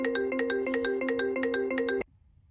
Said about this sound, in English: Sorry about that. My phone rang in the middle of recording. I thought I had her on mute.